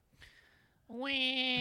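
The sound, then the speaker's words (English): After a brief quiet stretch, a pig-like squeal rises sharply from behind a door (door 2) and holds loud and steady for about a second, a single drawn-out, nasal cry. “Yeah, you're a good little pig.”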